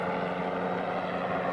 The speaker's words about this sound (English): What's that? They got helicopters over here.